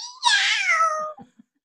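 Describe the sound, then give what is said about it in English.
A single drawn-out meow, voiced by a person mimicking a cat when asked what the kitty says, loud, falling in pitch over about a second before trailing off into a couple of soft breathy sounds. “Does she at least say meow? Uh-huh. Okay. Yeah. She's really good at that. What does the kitty say? Meow.”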